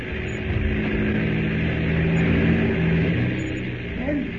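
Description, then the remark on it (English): A seaplane taxis back to midstream on a river, its engine giving a steady, moderately loud droning rumble with a low harmonic hum that holds evenly throughout, swelling slightly midway. “He's taxiing back to midstream.”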